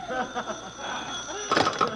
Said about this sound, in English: Suddenly, my phone rings.